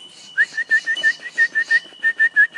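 A bird gives a whistling call: about a dozen short, clear, evenly spaced whistled notes in a steady rhythm, distinct, with a faint high-pitched hum running underneath.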